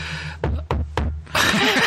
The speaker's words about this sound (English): Are you knocking on wood by chance?